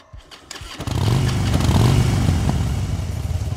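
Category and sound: vehicle, motorcycle engine revving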